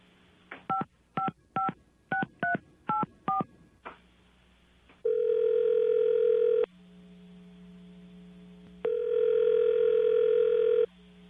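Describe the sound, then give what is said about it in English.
Six quick touch-tone dialing beeps, then two long, steady telephone ringing tones separated by a pause, clear over a faint line hum, with no one speaking, as a caller on hold is put through to a conference call. “Let's just call up Starly on the telephone, okay?”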